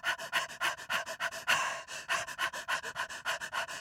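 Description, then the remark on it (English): A dog pants rapidly and steadily, a quick run of breathy huffs in an even rhythm, clear, with no other sounds around it. “But always the sound of the dog followed them.”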